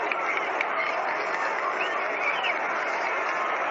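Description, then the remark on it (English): A stadium crowd at a baseball game applauds a batter steadily, a dense, sustained wash of clapping and crowd noise with no break, heard alone without any voice over it and with a muffled, band-limited tone. “Getting a nice round of applause.”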